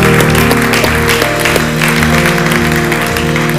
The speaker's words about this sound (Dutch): Oké, laten we deze mensen een applaus geven, ook online. Give these people a hand, also online.